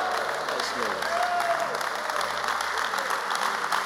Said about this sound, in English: Want to give me a wonderful round of applause? You give him. Want to give me a wonderful ovation? You give him. You stand to your feet and appreciate him.